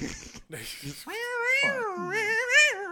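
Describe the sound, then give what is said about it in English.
A person's voice imitates neighborhood cats yowling at night, drawn-out wavering caterwauls rising and falling in pitch for a couple of seconds, loud, after a brief stretch of talking at the start. “And one night, all of a sudden, at, like, 4 a.m., I just heard all of the cats meowing in the entire neighborhood.”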